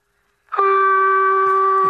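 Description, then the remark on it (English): After a brief silence, a voice on a phone call imitates a telephone dial tone with the mouth: one steady, unbroken, fairly loud buzzing hum at a constant pitch that holds until the end. “…, I know you're just doing a dial tone with your mouth.”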